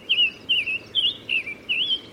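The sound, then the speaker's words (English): A summer tanager calls in a steady series of five short, high, warbling phrases with brief pauses between them, clear over a soft background hush. “Birds like summer tanagers also watch bees and wasps with a keen eye.”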